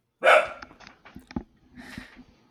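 A dog named Bruce lets out one sharp, loud bark, followed by scattered small noises and a quieter second bark about a second and a half later, with no talking.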